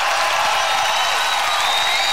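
A dense, steady roar of crowd cheering fills the whole stretch, loud and bright with hissy applause-like texture and no pauses or individual voices standing out.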